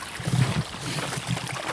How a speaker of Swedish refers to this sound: Oh shit, vilken härlig liten bäckfåra. Ja. Det här blir man ju lugn av alltså. Som vårtecken.